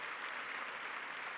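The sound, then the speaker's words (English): An audience claps together in a steady, dense wash of applause, many hands blending into a continuous crackling roar with no voices over it, giving a clap offering of thanks to honor their parents. “And right now, I want you to honor your parents by giving a clap offering of thanks.”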